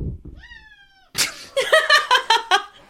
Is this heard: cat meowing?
yes